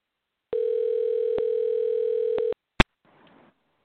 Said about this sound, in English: So let's kind of see if we can wait for the dial tone right now.